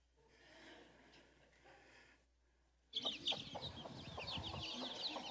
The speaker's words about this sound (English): This happened in Albania, and I'll never forget the day that this happened, but watch this film here. That's an Albanian chicken, by the way. That's Albanian grass.